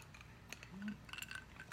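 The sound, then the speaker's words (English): Glasses clinking in a first toast: a few light, quick chinks with a faint bright ring after them, heard quietly, with no talking. “So our first cheers goes to our good friend, Heartfire27, for sending the amazing prize, the amazing present to Heartfire.”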